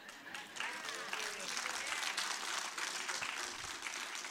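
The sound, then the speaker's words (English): A large crowd applauds steadily, a dense wash of many hands clapping at once that holds at an even, fairly loud level for several seconds, with faint voices mixed in beneath it. “You can applaud.”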